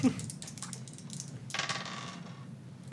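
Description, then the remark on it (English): Dice rattle and tumble across a hard tabletop, a quick run of small sharp clicks followed by a brighter, busier clatter before settling on snake eyes. Fairly quiet, with no voices. “Oh, God. Snake eyes.”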